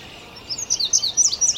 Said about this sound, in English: Up above us, there's an indigo bunting singing up in the maple right there.